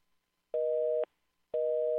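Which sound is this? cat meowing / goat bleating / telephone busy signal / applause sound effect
telephone busy signal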